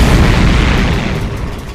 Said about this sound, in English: With a massive explosion, Mecha Captain Marvelous falls to pieces!